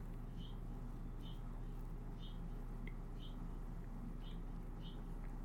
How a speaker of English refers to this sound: I imagine you can hear the birds today. There's a lot going on out there.